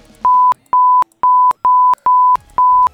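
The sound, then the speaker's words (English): Six steady, loud telephone-line ringback test beeps in a regular pulsing pattern, each a short pure tone with a click at its start and end, separated by brief silences. “So this is going to do a ringback.”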